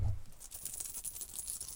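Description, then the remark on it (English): A handful of loose change from a pocket clatters down in a quick, irregular run of bright metallic clinks and jingles, fairly quiet, with no one speaking, as part of a game of guessing how much money it is. “We're guessing how much money you've got. I've got change in my pocket, yeah.”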